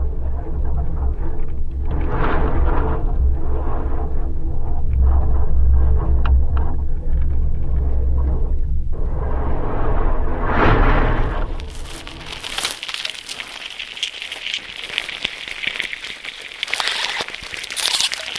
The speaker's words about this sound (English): So this is a Choya cactus with a contact microphone attached to it on a windy day, and you're hearing the wind sort of whistling through the holes in this dead cactus.